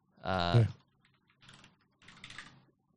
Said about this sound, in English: I don't know if you can hear me typing.